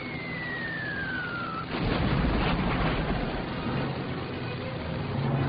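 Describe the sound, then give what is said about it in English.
A falling whine gives way to a loud, sustained rattle of a Kittyhawk fighter's machine guns, the crack of the .30 caliber wing guns and the slow thud of the .50 caliber nose gun, rapid cracking shots blurring into a dense roar with a deep rumble beneath. “Feel the stick of the trigger the gun, the crack in the center of the 30 caliber wing guns. The slow thud of the 50 caliber nose gun.”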